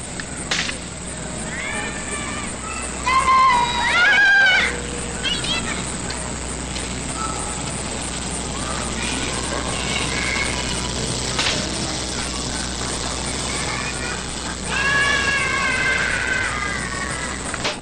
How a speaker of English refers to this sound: You heard the children, but did you hear the cicada shrilling from a nearby tree? Did you hear the crickets? Crickets produce their chirps by rubbing their wings together.